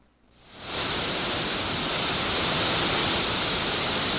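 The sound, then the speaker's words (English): A powerful, steady roar of rushing water swells up within the first second and then pours on continuously and loudly, like a waterfall, with no voices. “We're not talking even a bucket full, but we're talking about a mighty rushing flow of His presence.”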